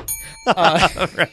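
A single bright bell ding, rung as a joke 'shame bell' sound effect, rings out clearly and briefly, its tone cut short as a person starts talking right after.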